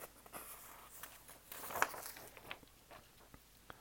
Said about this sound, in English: As I shuffle my notes.